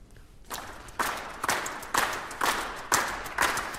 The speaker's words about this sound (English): So first of all, I'm going to ask the strings of the orchestra to clap 6/8, that is, six quavers to the bar, with natural emphasis on the first quaver and the fourth. Two in a bar, effectively.